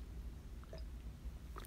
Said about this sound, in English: I'm having a sip of coffee, sorry.